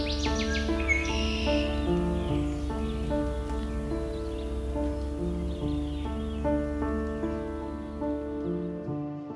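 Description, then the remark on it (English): Songbirds at Valens Lake Conservation Area in June 2021, during the height of the bird breeding season, chirp and trill in quick bursts, most clearly in the opening seconds, over steady, sustained instrumental music that plays throughout. No one speaks. “Today we'll be listening for bird species such as black and white warbler, northern water thrush, alder and willow flycatchers, and many more.”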